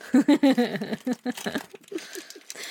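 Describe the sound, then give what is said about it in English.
A heavily taped package being ripped open, tape and packaging crinkled in a series of short rough tearing bursts, with a strained voice sounding briefly over the start. “Did you use enough goddamn tape?”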